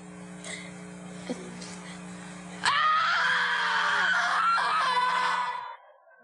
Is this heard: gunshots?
no